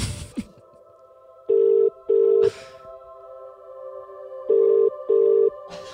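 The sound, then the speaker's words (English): An outgoing phone call's ringback tone, placed at 2 p.m. on a workday, purrs in two double rings, each pair of short steady buzzes followed by a pause, heard clearly over a faint background hum. “It is ringing, though.”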